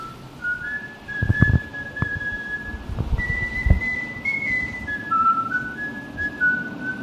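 A person whistles a clear melody of long, sustained notes that step up and down in pitch, fairly loud, with a few low thumps and a steady background hum underneath, as the intro of a demo song by a band from Denver, Colorado.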